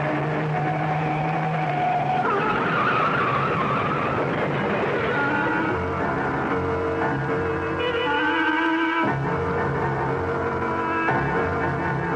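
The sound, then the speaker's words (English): A car's tires screech and skid loudly over a roaring engine as the driver swerves off the road to avoid a truck, the squeal wavering and shifting pitch for several seconds, with no voices. “That truck! Turn the wheel! Go off the road!”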